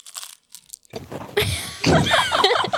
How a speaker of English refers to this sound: But before we do that, I have to warn everyone listening that our guests are eating Doritos. Cool Ranch Doritos.